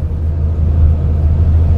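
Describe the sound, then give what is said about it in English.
A steady, loud low-pitched engine rumble inside a moving bus travelling to Samara, Russia, with a constant droning hum and no voices. “he's now got the microphone at the front of the bus.”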